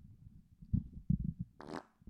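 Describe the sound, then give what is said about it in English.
A low, sputtering fart rumbles in short bursts, then ends with a brief, higher squeaky blast. It is fairly quiet, with no talking. “Man, why you got this is like the fourth time you farted.”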